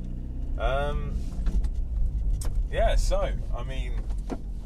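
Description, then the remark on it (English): Someone wearing a hoodie gets into their car on a warm day before driving home: shuffling and a door clunk, a brief whir like a power window, and low steady cabin rumble, with a voice making short vocal sounds. “For whatever reason, I've decided to get into my car, even though it's warm, with my hoodie on, and I think that may have been a mistake.”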